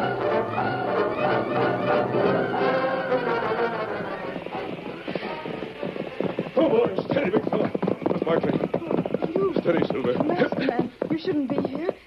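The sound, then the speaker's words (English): Saddled horses gallop off at speed with their riders, their hoofbeats a rapid, dense clatter that starts after a few seconds of other busy sound and stays loud, gradually thinning toward the end. “Hurry, get the horses!”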